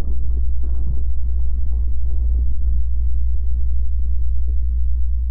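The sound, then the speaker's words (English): A fake imitation of the mysterious low hum: a steady, loud low-pitched hum drones without a break for several seconds, with a faint rumbling texture and occasional soft throbs above it; no one speaks. “It's not the real hum. It's a fake hum. Check it out. This is what it sounds like.”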